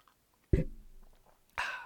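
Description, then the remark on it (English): A quiet pause broken by a brief low, throaty gulp, then a short airy slurp as someone sips tea. No talking. “Hang on, I need to take a sip of my tea here.”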